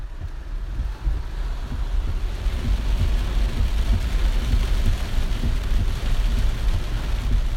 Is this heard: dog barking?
no